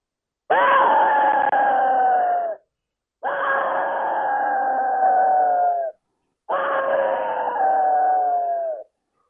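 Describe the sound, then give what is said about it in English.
Three loud, drawn-out screams from an Easy Axis deer game call, each lasting about two seconds with brief pauses between them, clear with no talking. “All right, well, let's hear that vocalization. Let's hear the Axis scream.”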